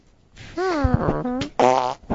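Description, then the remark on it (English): A loud, buzzy fart noise stretches out with a wavering pitch, breaks off briefly, then sputters again in a second burst, with no talking. “So he'd walk in my room, he'd get, we called it the fart corner, and he'd stand there, and I'm sitting there working, I'm like, okay.”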